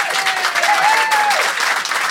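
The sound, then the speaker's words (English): A crowd claps steadily as an audience vote on which side of a debate is in the right, a dense, loud patter of many hands sustained for a couple of seconds, with a faint whistle-like tone gliding through the middle. “If you think Fanshawe and Rhys, and therefore Steph, is in the right, applaud now.”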